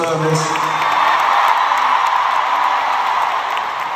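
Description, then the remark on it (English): A large concert crowd in New York City claps for Queen Elizabeth II after news of her passing, a dense, continuous wash of applause with scattered cheers and whoops rising over it at a fairly constant loudness throughout. “He and his audience clapped for the Queen.”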